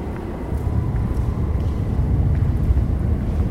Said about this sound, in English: The train is beneath our feet. So that's the overground line that I was talking about that goes through there now. It used to be the East London line.